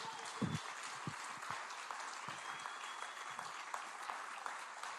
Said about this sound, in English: But can we have Pastor Karen come out? We're going to give Pastor Karen a round of applause and welcome this morning.